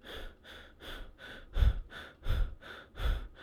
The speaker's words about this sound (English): What I mean by that is when you're breathing subconsciously, you're doing these small little quarter breaths.